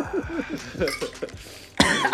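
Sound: coughing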